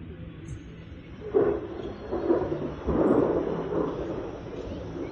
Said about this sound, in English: I call this first one a dark and stormy night.